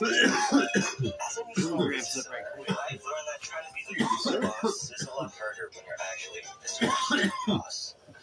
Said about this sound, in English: I told you not to let him take such a long hit. Dude. No, you're the one coughing. Here. That's just a tickle. I know. It's a good tickle. It just sounds bad.